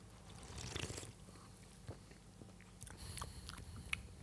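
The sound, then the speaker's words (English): Someone takes a quiet sip of a fizzy cinnamon-spiced cola, with soft slurping and wet mouth clicks, then a couple of sharper little swallowing sounds near the end. No one speaks. “Let's go for a sip.”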